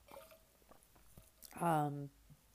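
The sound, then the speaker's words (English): Soft mouth clicks and wet slurping sounds of someone sipping water, followed by a brief voiced, satisfied exhale after swallowing. “I had to take a sip of water.”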